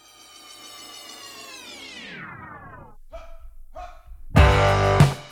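A pet dog whining and barking: a long, drawn-out falling whine, then two short barks and a final loud, harsh burst of barking, with no talking.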